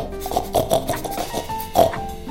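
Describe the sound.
A micro pig wearing a tiny raincoat and booties oinks and squeals in a quick run of short, nasal grunts with a few higher squeaky bursts, moderately loud, with no talking.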